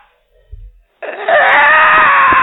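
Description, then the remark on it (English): After a soft low thud, a loud, harsh creature cry bursts in abruptly and holds as a sustained, strained wail, with no talking. “It cries, and you hear four other screeches from within the Fall Festival of Corrington.”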